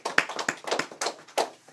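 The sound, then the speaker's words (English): A small group claps for a couple of seconds, with quick, uneven handclaps overlapping in a brisk patter at moderate volume, and no voices; applause for a person's almost 90 days free of opiates. “Get applause for that.”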